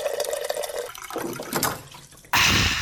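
Water pours and gurgles as a water cooler fills, with bubbly, rising tones, then a louder rush of water surges in near the end. Fairly loud, with no voices.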